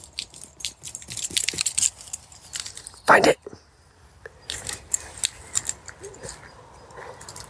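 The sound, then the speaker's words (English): Light metallic jingling of a dog's collar tags comes in quick, uneven bursts as the dog sprints over, with a brief loud shout of "Oi, rats!" from a person partway through. “Listen to this, see if you can hear him coming.”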